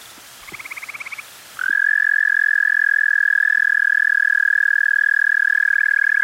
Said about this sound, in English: Eastern American toad. Correct. Holy cow. Wow. He's been studying. I didn't expect toads to be so loud. They were quite loud. Yeah. And high pitched, right?